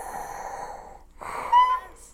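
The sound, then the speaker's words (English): A person imitates heavy, mechanical respirator breathing: one long raspy inhale, a brief pause, then a hoarse, hissing exhale with a slightly voiced, metallic edge. “And then the red lightsaber and he's in the dark glowing red and breathing.”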